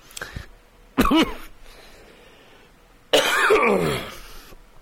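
A person with a cold coughs and clears their throat: a brief hack near the start, a sharp throaty burst around one second, then a longer, rougher throat-clearing fit.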